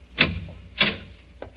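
A cellar door being opened: three short, dull clunks spaced about half a second apart, the last one quieter, with no voices.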